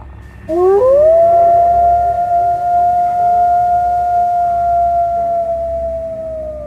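A single long, loud wolf howl rises quickly in pitch, then holds a steady, mournful tone for several seconds before fading slightly at the end, with no one speaking.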